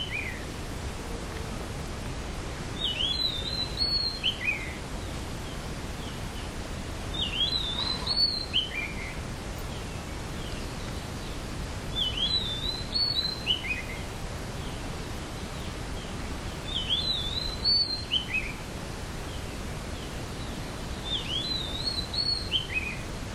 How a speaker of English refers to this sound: Sound of the birds. Where is this sound? Out there or in here? When you listen like body, you say, oh, the birds are up there, I'm hearing them, you're here.